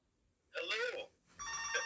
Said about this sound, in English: Now someone's ringing us. Oh, best laid plans, eh?